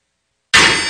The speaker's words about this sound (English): But if you were there, could you hear the hammering, the sound of the nails as they pierced and as they broke through his skin? Can you hear the hammer ring? The sound as it hit the nail.